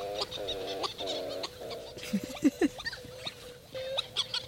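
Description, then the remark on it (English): Repeated nasal, goose-like honking and moaning calls from Hawaiian petrels ('ua'u) in the aluhe ferns where they live on Lanai, on a misty, drizzly evening, several birds overlapping in drawn-out harmonic phrases with short yelps between, no talking. “in the misty evening drizzle with our headlamps and rain jackets, overlooking the aluhe ferns where the uwa'u live.”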